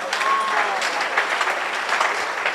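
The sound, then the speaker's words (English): An audience claps steadily, a dense, bright patter of many hands with no clear beat, holding at an even, fairly loud level throughout. “Clap for Jesus.”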